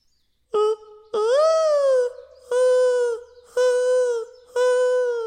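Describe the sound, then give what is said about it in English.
A dove's mating call: five loud cooing notes in a steady series, the first short and the rest drawn out with a rising swell, and no voices. “That dove put the bird back in the birds and the bees.”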